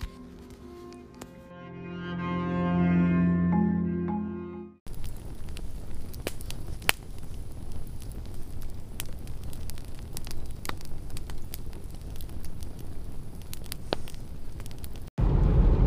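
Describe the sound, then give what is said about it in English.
A few seconds of low, sustained tonal music give way to a steady campfire crackle: a soft rushing hiss broken by irregular sharp pops and snaps, with no voices. “Around this campfire, thank you for joining me in the camp of the beyond.”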